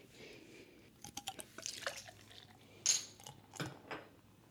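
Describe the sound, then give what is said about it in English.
Amber beer is poured into a glass, with irregular splashy bursts, drips and a soft fizzing hiss. There is no talking. “Well, this got a nice amber pour to it.”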